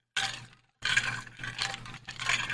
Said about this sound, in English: I'm sorry for those who hear the ice rattling around my water bottle. Normally my water bottle isn't picked up on the mic because of the ice.